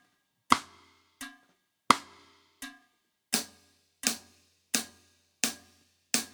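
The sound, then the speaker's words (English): Crisp, dry metronome clicks and drum practice pad strokes land on a steady beat, nine sharp hits in all, alternating loud and softer at first, then evenly accented, with no talking; a drummer practises playing behind, slightly ahead of, then on the click. “It's quite nice to practice like that with the metronome, just on a pad or something, see if you can make the sound disappear.”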